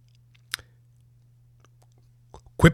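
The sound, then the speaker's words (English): Someone takes a quick sip of water: a wet mouth click, a brief pause, then a short burst of slurping and swallowing over a faint low hum. No talking. “Quick sip of water, boss.”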